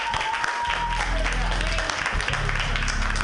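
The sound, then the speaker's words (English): Sustained audience applause for a comedian fills the room at a steady, fairly loud level, a dense wash of clapping with some crowd noise mixed in and no clear pauses. “Keep clapping for Johnny Isaac.”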